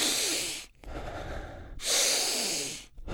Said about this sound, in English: Focus on the big, powerful inhale and then just a relaxed exhale.